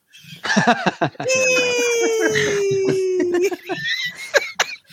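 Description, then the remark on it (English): A person voices a loud, sustained one-vowel scream lasting about two seconds, its pitch sliding slowly downward, acting out the stunned reaction of a character, Betty. Short bursts of vocal sounds, like talking or giggling, come before and after it. “Betty is so stunned that she can only utter one vowel in a prolonged scream.”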